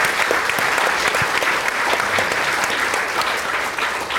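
A crowd claps steadily, a dense, even wash of many hands with scattered sharper claps, holding at a constant loudness from start to finish with no voices standing out.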